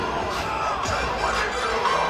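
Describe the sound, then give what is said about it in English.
A large arena crowd at the Ford Center cheers and roars continuously at a night game, with crowds from both schools, including a huge North Texas crowd: a dense wash of many voices with shouts rising above it, loud and steady throughout with no clear pauses. “Both schools have feisty crowds here tonight at the Ford Center, and North Texas had a huge crowd, as you might expect, being 30 minutes away.”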